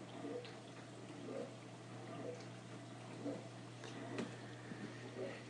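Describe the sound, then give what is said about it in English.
A dishwasher runs in the background, a steady low motor hum under continuous swishing and sloshing water, with occasional faint clicks and splashes, heard from a short distance at low volume. “But I'm listening to the dishwasher over my shoulder here.”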